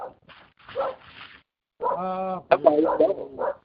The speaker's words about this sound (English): I think that's not Jack's barking. No. It's my neighbor's dog.